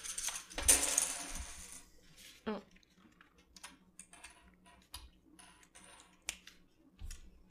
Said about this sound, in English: All right. Flip those coins.